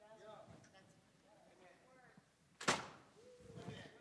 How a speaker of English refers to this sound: And what happened is years ago, the hinge got popped just a little bit. And so to shut this door requires a unique touch. You have to pull back on it and pull in. So here we go. It requires two hands.